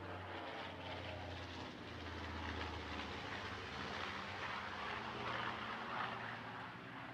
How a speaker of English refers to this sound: Hello, plane.